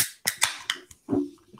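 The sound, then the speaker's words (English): A can of Country Time lemonade being cracked open: a few sharp, quick metallic clicks from the tab, then a brief, louder hissing burst, with no talking. “Cracking open a can of Country Time lemonade.”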